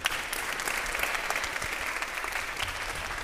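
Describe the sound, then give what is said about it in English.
An audience applauds a pastor, sustained dense clapping at an even level throughout, with no pauses or individual claps standing out from the wash of sound. “Let's clap our hands once again”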